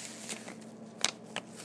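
A few sharp, crackly crunches of frozen ice in a drink of water, three brittle bursts spaced irregularly, with the middle one loudest, over a low steady hum and no talking.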